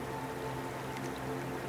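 A steady, continuous rush of water falling from a waterfall, an even wash of noise with no breaks and no voices, alongside a faint low hum.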